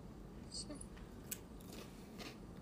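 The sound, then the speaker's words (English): An animal chewing on something, with a few faint, irregular crunchy clicks and snips spread over a couple of seconds against a quiet, low background. “Stop chewing on that.”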